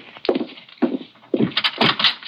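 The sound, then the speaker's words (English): Knocking on a cabin door: a series of dull, woody thumps, a couple of single raps and then a quicker cluster, moderately loud with no voices. “Someone at the door.”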